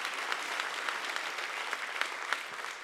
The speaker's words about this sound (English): Amen, everybody. Amen. Come on, let's clap our hands and say a good amen. Believe that for you.